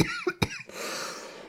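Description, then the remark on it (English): Two quick, sharp coughs, followed by a rough, breathy rasp trailing off, with no talking; a character coughing as he dies. “And he dies from coughing.”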